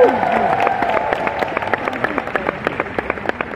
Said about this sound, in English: You need to give a round of applause to yourselves.